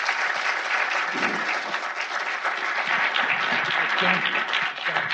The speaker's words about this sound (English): Please give a round of applause to our great guest.